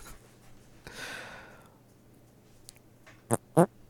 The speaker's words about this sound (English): Was that you but actually farting into the mic?